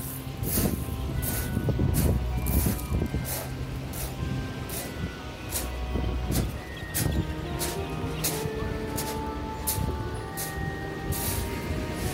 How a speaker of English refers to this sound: I'm just walking down the beach towards the ruins of the West Pier, which caught fire about 20 years ago. Just walking over the pebbly beach down towards the sea.